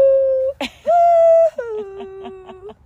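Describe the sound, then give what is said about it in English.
A pet gives a thin, whistling whine in three drawn-out tones: a steady note, a brief yelp, a slightly higher sustained note, then a lower wavering one with soft pulses. “What is the sound that she does? Oh, she whistles.”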